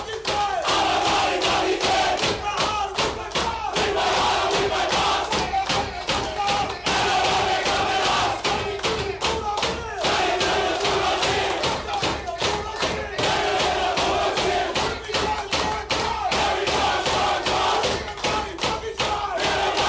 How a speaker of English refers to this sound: A lot of happy Bulldogs fans and certainly a happy Bulldogs crew in the sheds last night as we go to the break. Let's hear their celebrations.